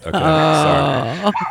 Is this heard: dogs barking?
yes